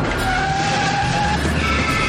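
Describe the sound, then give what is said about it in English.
A car races at high speed with tires skidding and squealing, a steady loud roar with sustained high-pitched screeching tones across the whole stretch, no voices present. “Fast, driving very, very fast.”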